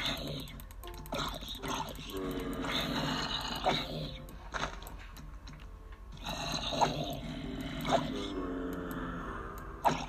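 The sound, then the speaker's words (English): Raspy video game zombie groans repeat in drawn-out bursts, fairly loud, as the player faces the zombies with a wooden sword, with scattered clicks and scuffling sounds between them and no talking. “Fear me, little zombies.”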